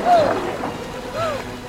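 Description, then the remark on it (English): Rushing river water churns steadily around a canoe, a loud continuous wash with brief strained voices calling out over it. “Don't let the river grab you.”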